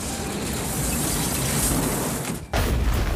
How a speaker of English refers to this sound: A rumbling is heard, crashing, coming closer as the cursing ball of clumsiness comes breaking through a large vent.